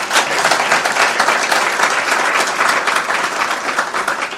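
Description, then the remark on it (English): Loud, sustained applause from an audience for a guest who came from Zimbabwe, a dense crackle of many hands clapping steadily for several seconds without pause or speech. “And I think he deserves a round of applause.”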